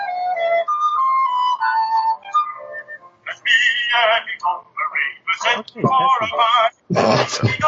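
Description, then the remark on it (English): A shortwave numbers station broadcast, the Lincolnshire Poacher: a thin, electronic-sounding melody plays for a few seconds, then a tinny, band-limited voice speaks in clipped bursts, fairly loud and crackly as if over radio. “Sounds like someone is playing the Lincolnshire Poacher.”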